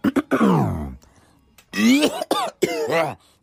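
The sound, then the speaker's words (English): A man in Austin, Texas clears his throat loudly because of allergies: quick rough hacks, a long descending rasping groan, a brief pause, then three more strained, voiced throat-clearing bursts. “Excuse me a moment. I have to clear my throat.”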